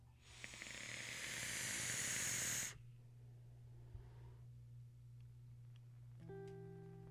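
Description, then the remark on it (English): A dripped vape coil, with the airflow open just a hair and fully open on the bottom, hisses loudly and steadily for about two and a half seconds, then stops abruptly, leaving a low hum with faint scattered crackles and a few soft tones near the end. “This vape is incredible.”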